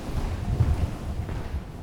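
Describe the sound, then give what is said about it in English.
Strong wind buffets the microphone on a 10,000-square-foot glass-panelled outdoor viewing deck on floor 51, a steady low rumbling roar with gusty swells and no voices, fairly loud throughout. “Windy, but beautiful.”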